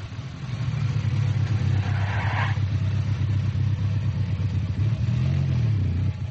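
A car engine hums steadily while driving, its low drone rising and falling as it revs, with a brief higher whine partway through and no voices.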